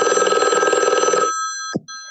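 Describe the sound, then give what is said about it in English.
A loud telephone bell rings with a rapid metallic trill for over a second, then stops abruptly, leaving a steady electronic tone and a brief click as the ring cuts off. “I'm just going to unplug this phone and it'll go to my answering.”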